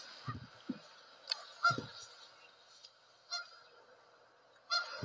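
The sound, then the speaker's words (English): A bird calls several times with short, honking, goose-like cries at irregular intervals, moderately loud over a steady outdoor background hiss on a golf course during a golf tournament, with no one talking. “Is that the bird again? I think it was, yes.”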